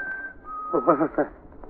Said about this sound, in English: What was that? Sounds like a bird, maybe. Birds don't whistle like that.